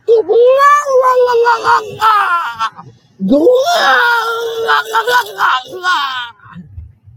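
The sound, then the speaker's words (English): A voice imitates a turkey gobble in two long, loud, warbling bursts, each about three seconds, the pitch sliding up and then down with a rapid fluttering rattle. “you're terrible at turkey impressions”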